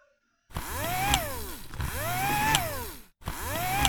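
A Roomba robot vacuum's motorized whirring rises and falls in repeated sweeping pitch arcs, its motor surging erratically, cutting out briefly before revving up again. Steady in loudness, with no talking.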